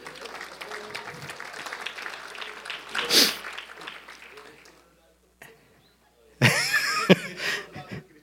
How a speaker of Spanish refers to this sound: Un aplauso.